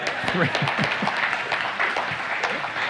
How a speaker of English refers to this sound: Okay, can three people clap now?